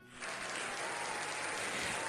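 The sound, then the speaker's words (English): An applause sound effect: a burst of crowd applause kicks in after a brief moment and holds steady, a dense, loud wash of many hands clapping with no voices on top. “And I'm putting a sound effect.”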